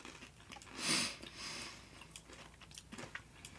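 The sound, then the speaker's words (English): A crisp bite into a crunchy cinnamon treat, followed by several quieter crunching chews in an irregular rhythm, with no one talking. “It kind of just tastes like Cinnamon Toast Crunch.”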